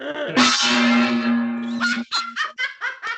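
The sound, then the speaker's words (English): A gong is struck once, its loud, shimmering ring holding for over a second before cutting off into a quick run of short, pulsing, honk-like bursts. “I can't believe you own a gong.”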